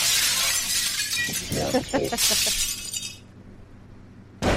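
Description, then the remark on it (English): Glass shatters loudly, a bright crashing burst with scattered tinkling fragments, then the clatter fades into quiet before a brief final burst of noise at the end. “The devil breaks glass like a man.”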